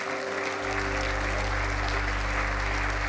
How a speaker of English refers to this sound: But if you'd like to give tonight, you can return to your seats from the altar. You've been standing long enough. Give their new brothers and sisters in Christ a big hand clap.